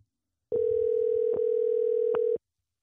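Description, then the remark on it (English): A phone call ringing out: one steady, mid-pitched electronic ringback tone holds evenly for about two seconds, then cuts off, with silence around it and no voices. “So this is ringing real quick”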